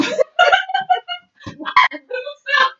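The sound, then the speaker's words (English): A voice makes a rapid string of buzzy, squawking fart noises, several short bursts one after another, fairly loud with no other sounds around them. “here's a fart noise.”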